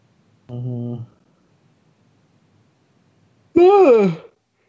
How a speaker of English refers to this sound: Sorry for yawning. I am tired.